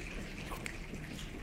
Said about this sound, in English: And then while it's thundering, the rain starts. You can hear it sort of pitter-pattering.